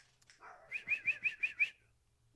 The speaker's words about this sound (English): It's fucking dogs.